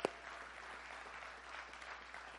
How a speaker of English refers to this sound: Yeah, you can clap about that.